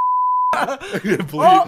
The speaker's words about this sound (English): Bleep.